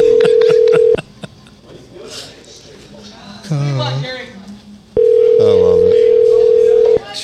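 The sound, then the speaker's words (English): A phone line rings out with two long, steady ringback tones a few seconds apart as an outgoing call is placed to someone who is not answering, loud. Faint murmuring voices and background noise fill the gap between rings. “They're a dickhead for not answering your fucking phone call. Watch this.”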